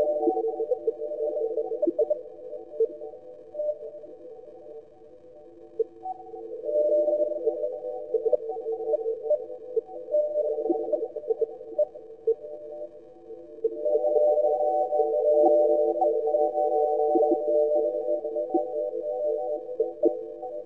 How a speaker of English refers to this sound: Crazy water synth thingy. Did anyone see that? I thought it was a marvellous piece of gizmo technology.